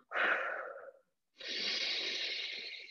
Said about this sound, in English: So you just take three more big, deep breaths, breathing in all that you want to feel, breathing in love and joy and light.